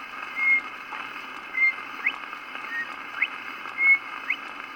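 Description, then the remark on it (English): Northern bobwhite song: short, clear whistled notes, several ending in a quick upward slur, repeated at roughly one-second intervals over a steady background hiss. “bird song, the Bob White.”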